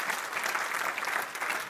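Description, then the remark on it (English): A crowd claps steadily, a dense, even patter of many hands with no pauses, bright and crackly, with no voices over it. “Your speech, I'm going to wait while you clap your hands because that's true.”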